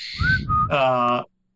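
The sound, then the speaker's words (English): A person whistles a short, clear note, briefly broken and resumed, followed by a buzzier, voiced tone that ends abruptly, all within about a second. “Unconsciously, his mouth pursed and a clear note was emitted.”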